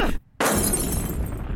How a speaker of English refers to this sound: So that is Shake taking the phone out of Frylock's hand and throwing it into the TV, causing an explosion.